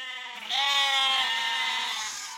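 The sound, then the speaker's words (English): A lamb bleats once in a long, wavering cry that lasts about two seconds, loud, with nothing else around it. “Oh, would you young sheep just shut up?”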